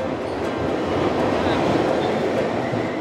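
A steady, loud rumble and clatter of a subway train moving through an underground station, a dense roar of wheels and rails that holds close and constant for about three seconds.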